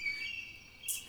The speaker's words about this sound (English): With the fog cleared and it still being kind of like late afternoon, you heard kind of like birdsong and kind of like small chatters and flutterings of wings, especially if you like nudge a branch just like leaning into the pathway